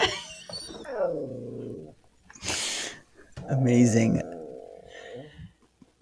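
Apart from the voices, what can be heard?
dog growling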